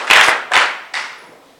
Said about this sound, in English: Clap your hands together for Jesus as you take your seats.